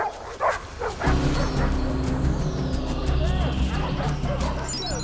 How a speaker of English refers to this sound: Looks like the police are just reaching the clearing now. Dogs have got the scent of the sausages.